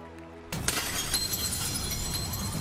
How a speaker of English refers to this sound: When Hillary Clinton led the Democratic National Convention in 2016, she shattered the glass on a massive screen as a huge audience erupted with cheers.